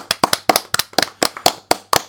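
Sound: round of applause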